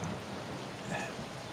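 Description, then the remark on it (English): Steady, dense rainfall hisses continuously at night with a low rumble of a storm beneath it, even and unbroken over a brief stretch, with no voices. “There is a storm brewing at night. It's your normal”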